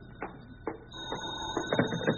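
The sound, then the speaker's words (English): An old telephone bell rings at Mr. Benny's residence, a rattling, metallic clatter whose rapid strikes swell in bursts and grow louder toward the end, with no voices over it. “Now the phone.”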